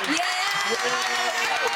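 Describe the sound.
A steady round of hand clapping from a crowd, dense and fairly loud throughout, with voices and some cheering mixed in.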